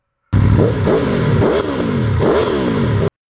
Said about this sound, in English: Human controllers were firing up the motorcycles. I could hear the sputtering roar of the engines. In all, 15 Yamahas and Kawasakis came up through the hole.